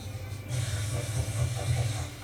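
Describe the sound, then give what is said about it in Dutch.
Boemboe spice paste fried for about a minute sizzles in a frying pan, a steady crackling hiss that swells after a brief quieter start and holds for the rest of the moment with a low rumbling underneath. “Tijd om de boemboe te bakken, minuutje.”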